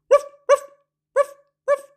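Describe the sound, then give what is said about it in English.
A dog barks four times, two quick barks, a short pause, then two more, each bark short and clear with no other sounds around. “What do dogs say? Woof, woof, woof, woof.”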